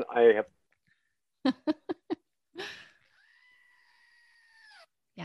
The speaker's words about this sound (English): And one last time, I want to hear that screaming goat again. Just that makes me happy. It does.